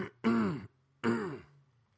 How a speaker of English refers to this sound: Little cough in the throat. Why? Because I wasn't wearing a scarf earlier.